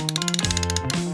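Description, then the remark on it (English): A wrench ratchets in a quick, even run of about a dozen sharp clicks, layered over a steady tonal hum that dips lower midway, then rises again before a final click. “Wrench!”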